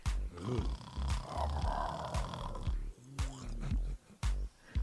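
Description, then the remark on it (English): A person loudly imitates a bear's snoring with a series of rough, growling snorts and grunts, repeating in uneven bursts over a few seconds. “So either you real fine and you snoring like a damn bear.”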